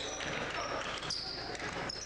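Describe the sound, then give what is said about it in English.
A basketball is dribbled to the right wing during a game involving the Titans, a few spaced thumps on a hardwood court, set against a steady wash of arena crowd noise and squeaky high tones. “Robinson dribbles to the right wing.”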